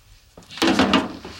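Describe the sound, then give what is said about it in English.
A short plastic scrape and slide as a dryer lint trap is pulled out, one loud rasping pull lasting about half a second after a faint click, with no talking. “Cleaning out the old dryer lint, huh?”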